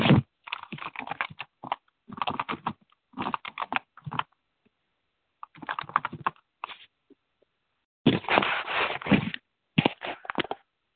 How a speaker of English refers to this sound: Now, I'm typing in this as a keyword.